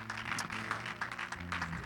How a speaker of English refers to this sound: So good to see all of our guests. We give our guests a great big hand clap.